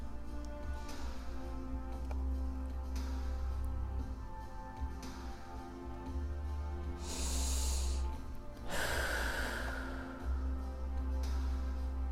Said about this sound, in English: Okay, let's take a deep breath.